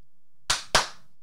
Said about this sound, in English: Why do you always clap twice? Because it's gay. Wait, why are two claps gay?